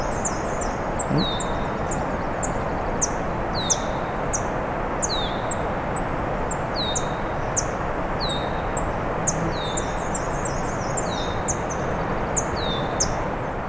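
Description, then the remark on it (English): A swamp sparrow following a person gives a steady series of short, sharp ticking calls, repeating every second or so against a constant hiss of outdoor background noise, with no one talking. “The swamp sparrow is still following me and ticking as well.”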